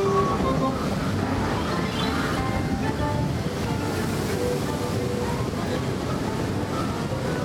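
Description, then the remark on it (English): Water splashes and sprays in a loud, continuous rush that fills the whole stretch, steady and churning, shooting out at a theme park ride where people get soaked, with faint background noise mixed in. “Place they were talking about where you get soaked. Yeah. Well, look at the water right there.”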